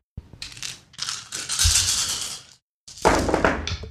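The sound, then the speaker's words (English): A handful of 13 dice is rolled for a join battle roll in a game, rattling and clattering in quick bursts, with a short gap before a second loud tumble, crisp with no talking. “So go ahead and roll those 13 dice.”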